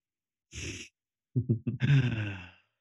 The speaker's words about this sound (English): Oh, just yawned. I'm tired.